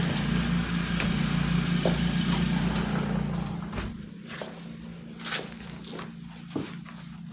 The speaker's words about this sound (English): I think it's getting a little loud. I'm just, excuse me, I'm going to stop and close the door.